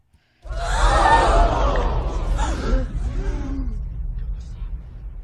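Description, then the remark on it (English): A crowd of many voices gasps together in a sudden, loud collective intake of breath, then trails off into murmuring chatter and low background rumble. “And then we have the gasping crowd.”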